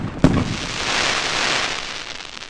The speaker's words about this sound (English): People around the world have long used fireworks to celebrate. National Day in Singapore, Australia Day in Australia, Guy Fawkes Night in England, and Diwali in India are just some of the major events marked with fireworks.